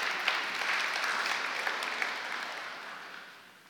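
An audience applauds, a dense patter of many hands clapping together that holds steady for a few seconds before gradually tapering off, with no voices heard.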